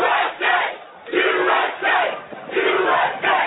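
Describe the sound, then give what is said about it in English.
A crowd chants loudly in a steady rhythmic pattern, voices swelling in repeated bursts roughly every half second to a second, with no separate speech over it. “I don't know if you've ever heard this, but this is a little chant I typically do on the podcast, and this is how we'll end it.”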